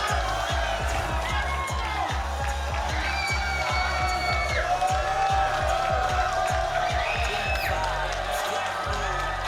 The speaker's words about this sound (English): Kind of feel like we should pipe in some crowd noise for this one, though. This is supposed to be like a hype dance party